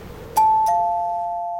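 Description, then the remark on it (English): A front doorbell rings with a classic two-note ding-dong, the higher chime followed by a lower one that hangs and slowly fades. The sound is clear, with no voices. “At that moment, the front doorbell rang.”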